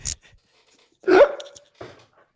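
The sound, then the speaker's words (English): A puppy gives one loud, sharp bark with a short whining tail, followed by a quieter yelp; faint clicks and rustles fill the gaps, and no one speaks. “Could you hear Scrappy? yes, I think everyone in Fountain City could hear Yeah. Scrappy.”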